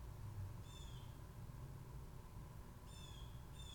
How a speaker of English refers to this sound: Can you guys hear that loud-ass bird? It's back! It's a different one. It sounds a little different.